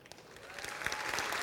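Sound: audience clapping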